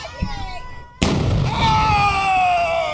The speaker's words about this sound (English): This guy's going to shoot a gun off. It's going to start right off with a gun